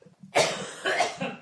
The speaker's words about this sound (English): You know, having a cough really affects your timing.